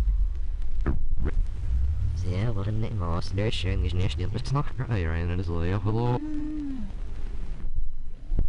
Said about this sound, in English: They may be the only animal besides man for which this is true. All the whales in an area are constantly changing their shared song in little ways.